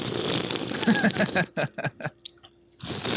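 Wet slurping and sipping from a Modelo beer, a noisy stretch followed by several short gulping bursts, then a brief pause before another rush of slurping noise.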